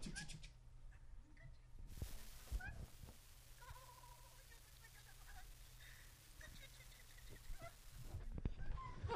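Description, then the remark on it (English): Faint, high kitten mews and squeaks from a 17-second viral online video play thinly through a speaker, scattered among soft background voices and a couple of brief bursts of noise. “I can't believe we just wasted time on a kitty cat.”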